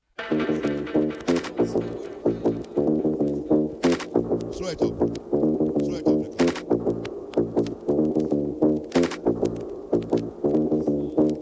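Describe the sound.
A reggae dubplate plays loud and steady, with a singer's voice riding over a rhythmic bassline and sharp percussive hits recurring every couple of seconds.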